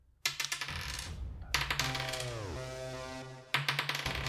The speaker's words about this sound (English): I rolled two ones on the d6 there.